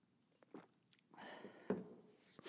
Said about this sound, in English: Sorry if you could hear me gulp.